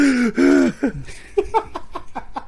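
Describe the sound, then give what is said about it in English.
A voice imitates a man's heavy, labored breathing: two drawn-out, strained voiced exhales, then a quick run of rhythmic panting huffs, fairly loud. “Yeah, just breathing heavy, sweating. He's He's literally cake? Breathing like this.”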